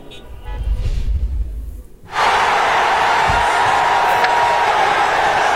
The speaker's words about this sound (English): And the Italian capital erupted last night with people taking to the streets, waving flags and honking horns after their victory against England in the Euro 2020 final.